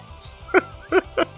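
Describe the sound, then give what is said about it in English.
A goat bleats three times in quick succession, short nasal cries spaced about half a second apart, clear over a faint low rumble. “Come on, goat.”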